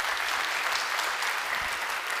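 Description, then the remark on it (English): A church audience applauds steadily for the 144 new families who attended the church over the past year, a dense, even wash of many hands clapping with no pauses or individual claps standing out, and no talking over it. “And those are, yeah, you can clap for that.”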